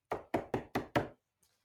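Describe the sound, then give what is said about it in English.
Five loud, evenly spaced knocks on a wooden cabin door aboard a ship during a stormy sea crossing, in quick succession and resonant, followed by a brief faint sound and silence. “I met Bill when I heard a loud knock on my door.”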